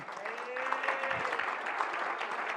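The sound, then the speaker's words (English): A church audience breaks into steady applause, many hands clapping together in a dense, continuous patter that holds at an even level for a few seconds, with faint voices mixed underneath. “Oh, come on, somebody clap.”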